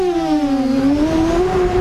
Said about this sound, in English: Imagine Amazon, FedEx, UPS, a DHL, any other delivery service are using drones. This is what Atlanta sounds like.